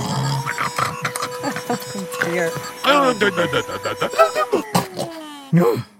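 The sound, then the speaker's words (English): Someone clears their sinuses with a run of loud, irregular snorts and wet snuffling sniffs, some almost pig-like, over a faint steady tone in the background. “hang on. Just let me clear my sinuses.”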